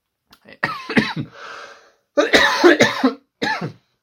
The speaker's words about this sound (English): Sorry, still trying to shake a little bit of a cough myself.